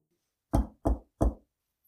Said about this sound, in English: Any knockers or anything? Not particularly, it's just a normal house. Okay. I knock.